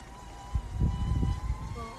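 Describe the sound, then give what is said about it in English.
A drone flies overhead outside, its steady, high electric whine holding several faint harmonic tones above a fluttering low rumble that swells and dips for two seconds. No one speaks. “Somebody's flying their fucking drone outside.”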